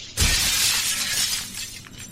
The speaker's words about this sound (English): The devil breaks glass like a man.